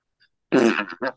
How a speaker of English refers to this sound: They make a banging sound or a beating sound on a graphene thin drum, a membrane that is one carbon atom thick.